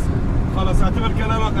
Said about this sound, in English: I'm in a car with a young married couple from around Damascus.